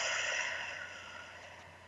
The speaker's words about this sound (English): Those of you who are able to, I invite you to take a breath and close your eyes. You're absolutely safe. Deep breath in through your nose.